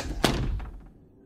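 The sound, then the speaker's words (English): A door shuts with a single dull, heavy thud, followed by a brief low rumble that fades within a second. No voices are heard. “The girl laughed a bubbling, melodic sound, then pulled on her hat and coat and ran out the door for the first time.”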